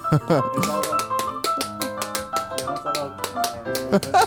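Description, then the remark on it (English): A man tap dances a time step: a run of sharp, crisp taps in a quick, syncopated rhythm, some clustered in fast bursts, heard over a steady tonal backdrop of voice or music. “What's the time step?”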